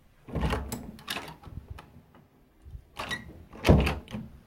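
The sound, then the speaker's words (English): A front door opens and shuts as someone arrives and enters the house, with two clusters of solid thumps and latch rattles a couple of seconds apart, moderately loud, with no voices. “are going to come through that door.”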